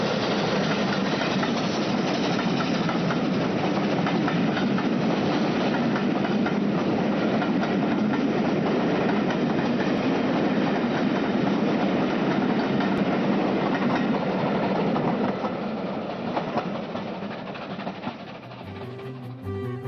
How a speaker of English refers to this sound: When the project is completed, we will again be able to hear Canadian Pacific live upon the railway, rather than relying on recordings such as this one.